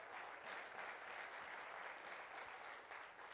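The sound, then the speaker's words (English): An audience at a morning church service claps their hands to give honor to their church leaders, steady, sustained applause, a dense crackling wash of many hands that holds at an even level throughout, with no voices standing out. “Let's clap our hands and give them honor.”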